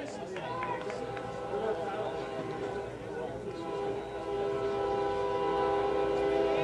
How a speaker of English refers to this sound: What would the summer be without a bunch of traffic on the old train track? Be out the old ballpark here.